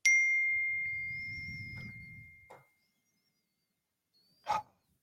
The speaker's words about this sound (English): No, you hit the bell. I thought it was like a turkey. I was done. My timer went off. That was an accident.